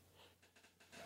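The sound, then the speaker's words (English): A short sharp sneeze bursts out loud after a near-silent pause, preceded by a brief breathy intake, and cuts off abruptly. “Oh, bless you.”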